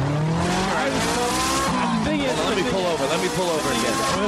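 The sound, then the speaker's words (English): A car engine revs loudly as the car pulls over, tires squealing and skidding in wavering, rising and falling screeches over about four seconds, continuous, with voices mixed in underneath. “Let me pull over.”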